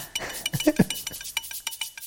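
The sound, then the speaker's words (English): A spoon clinks and scrapes against a cup as tea is stirred, a quick run of bright, light metallic taps at an uneven rhythm, with a couple of duller knocks. “Gary's just made me a cup of tea.”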